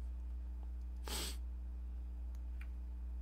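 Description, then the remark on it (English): A single short, sharp sniff made by a voice imitating an animal sniffing at a duffel bag full of loose cash. It is loud, with a steady low hum in the background and no talking. “Takes a sniff.”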